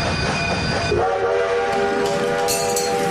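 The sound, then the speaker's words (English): A voice imitates a train whistle: after a second of rumbling noise, a steady, loud, harmonic hoot begins and holds through to the end over a continuous rushing background. “The whistles go woo-woo!”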